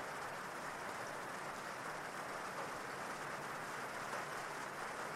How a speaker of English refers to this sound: And even if you didn't hear it consciously with all this rain, your unconscious mind knows exactly what they said.